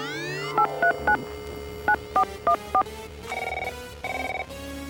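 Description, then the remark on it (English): A series of short, bright, fairly loud telephone keypad tones beeps in quick bursts, three then four, as someone dials a phone, followed by a couple of longer electronic warbling tones, with no talking. “Oh, I got the phone. Okay, now, call Amelia Earhart.”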